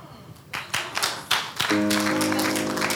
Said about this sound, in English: Now, those who are clapping to say God bless you, it means you are the ones who are doubting.